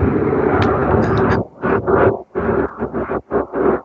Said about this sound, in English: There are there's a series of planes. Oh my God, those are prop planes.